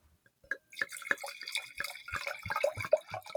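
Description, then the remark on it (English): Wine pours into a glass with a steady, bubbly glugging and splashing that starts after a brief pause and builds for about three seconds, with no talking. “So here, you do the wine.”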